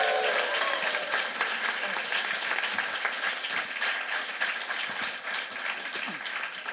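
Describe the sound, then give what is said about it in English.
An evening live-show audience applauds itself steadily, a dense wash of many hands clapping at once, sustained and fairly loud throughout with a faint murmur of voices underneath. “Bucketheads, give yourselves a round of applause.”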